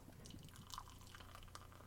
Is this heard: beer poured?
yes